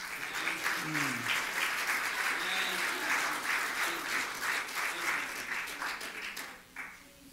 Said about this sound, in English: Hallelujah. Let me clap our hands again.